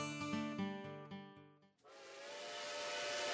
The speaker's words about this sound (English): We rolled away from the siding at Plum Creek. Joe had got us going at a good clip, whistle blowing, steam rising from his smokestack. Number 195.